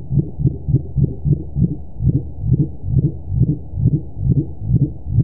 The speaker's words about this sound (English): The bio-twang recorded in the Mariana Trench is now believed to be a previously undiscovered whale call. The complex sound has a lot in common with other calls attributed to the dwarf mink whale. And this is a mink whale.